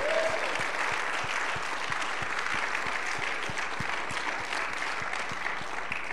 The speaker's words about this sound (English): Let's give her a hand clap unto the Lord this morning.